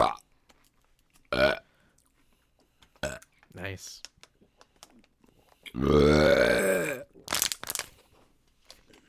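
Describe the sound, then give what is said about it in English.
A long, loud, rumbling burp lasting about a second follows a few short clicks and sipping noises. Someone briefly speaks a single word beforehand. “You know, trapped wind is a dangerous thing.”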